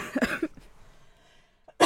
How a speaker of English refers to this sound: Apologies, coughing down the mic again.